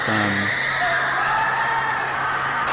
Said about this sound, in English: lots of screaming. Oh, wow, people running. But it looks so real.